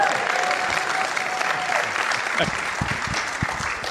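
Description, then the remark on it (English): Audience applause as a speaker pauses while introducing a doctor, a dense steady wash of many hands clapping at a fairly loud, even level throughout, with a faint murmur of voices mixed in. “And this is where I pause for applause.”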